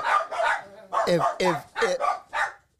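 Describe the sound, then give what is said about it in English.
Dogs bark in a quick run of about six sharp, loud barks with a short pause after the first two, then the barking stops. “Stop, dogs.”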